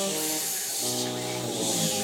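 A steady hissing, rushing water sound effect, like surf or spray, made by performers for the Red Sea billowing and foaming in a scene about Moses. It runs throughout at moderate volume, with a low droning hum beneath it.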